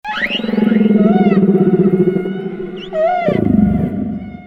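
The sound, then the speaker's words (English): Humpback whale song: loud, drawn-out moaning calls with rising, swooping whistles on top, ending in a deeper groan. No voices, just the whale's eerie tones. “but humpback whales are the singing stars of the sea.”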